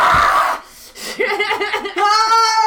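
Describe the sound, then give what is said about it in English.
A person vocally imitates screaming and yelling: a breathy burst, then a run of strained, wavering cries that climbs into a loud, sustained high-pitched scream. “There's screams. I do yells.”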